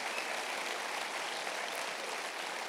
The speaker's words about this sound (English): I think they deserve a shout out and a round of applause. Would you say thank you to these men and women?